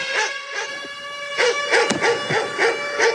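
Dog barks repeat in a steady, rhythmic pattern over sustained musical tones, sampled into a rap song, with a brief pause before the barking picks up again more densely.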